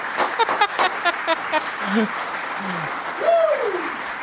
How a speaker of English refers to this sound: USA, USA. Y'all quit clapping. You're cutting in on my time.